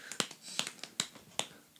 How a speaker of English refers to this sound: Did you ever do the clicking? The clicking clap? No. Or you do two finger clapping? Oh, that's for keeping time.